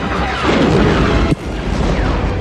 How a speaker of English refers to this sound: What is blowing up so much? Han's just shooting his blaster, and there's like fireworks going on.